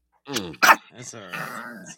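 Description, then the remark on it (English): A dog lets out two sharp, loud barks, followed by a drawn-out, whiny vocal sound as the barking trails off. “Red is barking in the background.”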